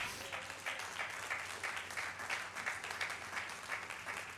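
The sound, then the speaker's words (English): An audience applauds together, a steady wash of many hands clapping at moderate volume with no single beat standing out, continuing evenly throughout. “Go ahead and clap.”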